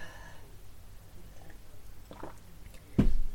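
sipping a drink

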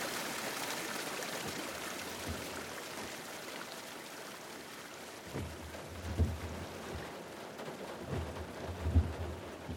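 heavy rain shower

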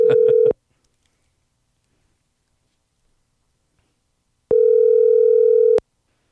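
telephone dial tone

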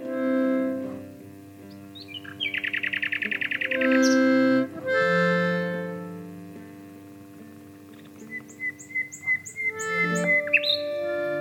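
nightingale singing

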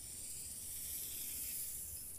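snake hissing sound effect

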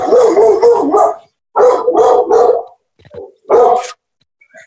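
dog barking

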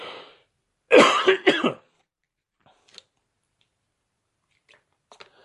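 cough and throat clearing

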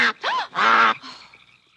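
goose honking

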